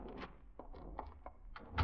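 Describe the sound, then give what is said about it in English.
A key scrapes and clicks in a lock with several small metallic taps, then a door latch releases and the door thuds open, fairly quiet over a low background rumble. “You step back, remembering somehow that you have your own key. Fumble nervously, opening the door.”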